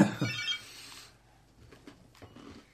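A telephone rings loudly for about a second, a bright jangling burst, then the ringing cuts off, leaving only faint scattered taps and background noise.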